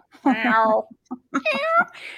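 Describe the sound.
A person imitates a kitten, giving two drawn-out, high meows with a short gap between them, fairly loud, followed by a brief breathy sound.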